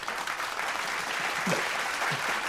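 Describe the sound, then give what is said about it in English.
An audience claps steadily for a couple of seconds in response to a joke about quantum computing, a dense, even wash of many hands with no voices standing out over it. “Let's clap that.”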